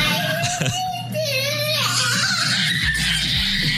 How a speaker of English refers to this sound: This is one of Casey's favorite things is listening to kids crying. This sound pierces straight through me.